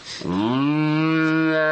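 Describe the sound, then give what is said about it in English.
A person imitates a cow, letting out one loud, sustained moo that starts with a brief breathy onset and holds a steady, low droning tone. “Yeah, random animal noises. I like the cow a lot. I do the cow a lot.”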